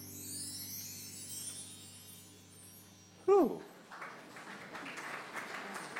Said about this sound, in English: That wasn't too bad. That's your one chance to clap, because this is not a concert.